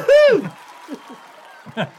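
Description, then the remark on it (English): A crowd-cheering sound effect played from a soundboard: one loud, pitch-swooping whoop, then a faint wash of crowd noise and applause with a few short voiced yelps over it. “Crowd cheering! Crowd cheering!”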